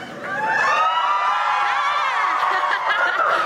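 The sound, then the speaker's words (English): A crowd cheers loudly and steadily, a dense wash of many overlapping voices whooping and shouting with high squeals on top, sustained for a few seconds without letting up. “But we'll be recording this, so the louder you cheer, the louder you'll be on the podcast.”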